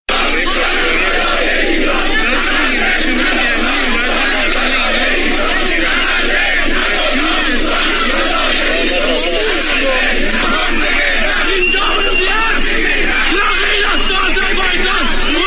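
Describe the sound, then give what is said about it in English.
A large crowd at the Iranian protests chants loudly in unison, calling for an end to the Khomeini Islamist revolution in Iran, many voices shouting together in a dense, rhythmic roar that stays steady and forceful throughout, with no pauses or quiet moments. “So there you had some chants from the Iranian protests.”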